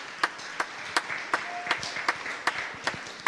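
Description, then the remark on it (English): An audience claps together in a steady, even rhythm of sharp, bright claps, about three per second, over a softer wash of scattered applause. No one speaks. “And to let you know, you guys was also, you can clap.”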